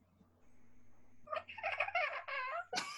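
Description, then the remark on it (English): After a second of near silence, a person imitates a cat chattering at birds: a quick, stuttering run of clicky, trilling bursts lasting over a second, ending with one short sharp burst, fairly loud. “You know how cats, when they're looking, they're following the birds?”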